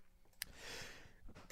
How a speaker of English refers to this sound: yes, I know. I'm coughing into the mic.